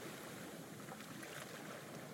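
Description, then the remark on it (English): A soft, steady wash of ocean surf at sunset, a continuous hiss of water with no distinct breaking crashes, heard quietly with no voices. “As you walk back along the footpath you came in on, the sounds of the ocean gently fade away until all you can hear are your eager footsteps taking you to where you will get a good night's sleep.”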